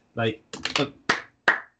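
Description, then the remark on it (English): Hand clapping: a quick burst of three sharp claps, then two more, evenly spaced and fairly loud, after a short voiced sound at the start. “I don't know if you can hear me clapping, dog.”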